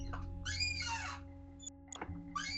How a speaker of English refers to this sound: And when they get to, like, you know, they're like squeaking along and like moving little mine carts. And I wonder if I can get my chair to squeak like a mine cart.